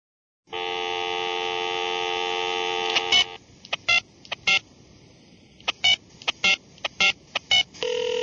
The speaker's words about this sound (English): I have with me a list of phone numbers I found on Craigslist of people who have rooms for rent, and I'd like to call them